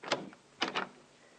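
Three solid knocks on a thick mahogany door in a waiting room: a single rap, a short pause, then two quick raps in succession. No one speaks.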